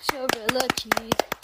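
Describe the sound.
A short burst of brisk, uneven hand clapping for a reader after she has read the story Bad Seed. About a dozen sharp claps come from a few people, with a high-pitched voice sounding underneath.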